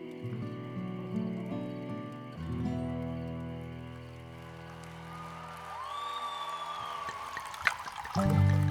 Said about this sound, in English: Norm poured some whiskey into his coffee from his secret flask, the one he kept strapped to his ankle, the one his manager had no idea existed.